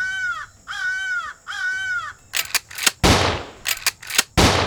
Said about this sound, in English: The raven began to caw.